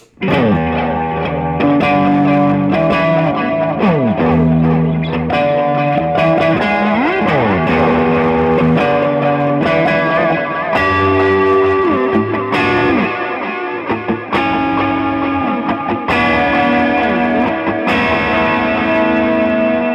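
A loud, continuous distorted electric guitar played through a phaser pedal, its tone swirling and sweeping as chords and bends ring out steadily, with no talking over it.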